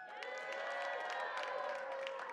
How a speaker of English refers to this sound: We need some people to cheer you guys on, though. All right? Does that sound good? So this half, all right, you guys are in charge for rooting for these guys. All right? So let me hear you.